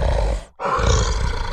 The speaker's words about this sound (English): No, no, bad bear, stop! You stop that! No, not my chairs!